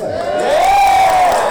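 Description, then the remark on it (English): An audience cheers loudly, with a sustained whistle-like whoop rising and falling above a dense wash of crowd noise throughout. “And tonight we celebrate with cheers.”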